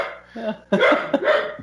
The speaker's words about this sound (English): This is like we're recording in a kennel. Like, everyone has dogs around.